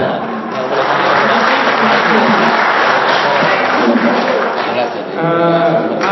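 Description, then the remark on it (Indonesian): Sustained audience applause, a dense, steady wash of clapping that stays loud for about six seconds, with voices and crowd murmur mixed in and a voice rising over it near the end. “Saya harap tidak ada tepuk tangan Pak ya.”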